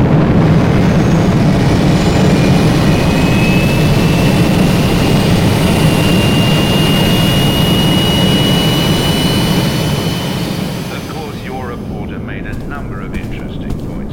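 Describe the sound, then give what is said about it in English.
A spacecraft's engines fire up for launch to Moonbase Alpha after its couplings are unlocked: a loud, steady roar with a thin high whine running through it, holding strong before easing off slightly near the end as a voice briefly cuts in. “Couplings unlocked. Engines hot.”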